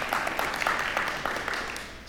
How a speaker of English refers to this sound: I can't believe you clapped.